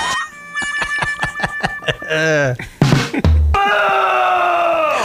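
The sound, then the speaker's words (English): A sound effect played on a radio show: a quick run of rhythmic, breathy vocal gasps leads into wavering, drawn-out moans and a final sustained groan, loud with no talking. “This is where you play the pussy breathing thing.”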